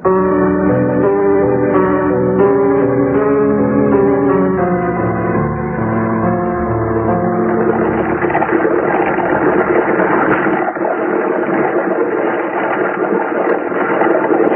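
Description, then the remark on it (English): A car engine hums steadily as the car is driven down to the docks, a continuous droning tone that turns into a rougher, broader rumble of motor and road noise partway through. No one speaks. “That's my car.”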